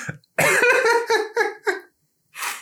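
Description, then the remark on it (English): A burst of harsh, choking coughs from someone who swallowed the wrong way, breathing in while swallowing, comes in a rapid series of four or five loud spasms that taper off, followed by a pause and a final raspy gasping breath. “I swallowed it the wrong way. I'm so sorry.”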